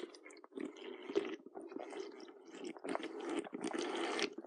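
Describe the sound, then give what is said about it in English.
Someone drinks water, with several wet gulps and swallows running together over a few seconds, fairly quiet and with no talking. “Sorry, I was getting a drink of water.”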